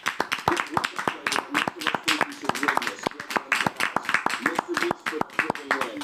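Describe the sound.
A small group applauds, a brisk, uneven patter of sharp hand claps that keeps going steadily for about six seconds, with some voices murmuring underneath.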